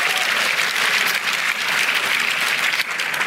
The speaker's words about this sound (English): Somebody give the Lord a hand clap, a shout, a hallelujah, and an amen.